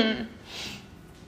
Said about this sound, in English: Oh my gosh, you guys, I'm gonna like cough just a second. I need some water.